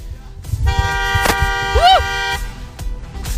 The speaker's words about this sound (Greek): Έλα, καλημέρα. Μπορούμε λίγο να κορνάρουμε.